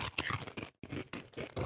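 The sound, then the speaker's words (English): Loud crunching and chewing of crisp Japanese curry-flavored potato chips, a quick series of dry, crackly bites with a brief pause midway, then more crunching, with no voices. “All right, let's crunch it off.”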